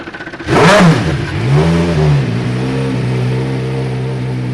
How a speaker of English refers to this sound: Now that, dear listener, is the sound of the 2003 Le Mans winner and the V8 engine firing up outside the new premises of Bentley Motorsport.